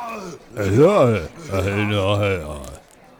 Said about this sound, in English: You're not loud. What the fuck? You're an angry cat.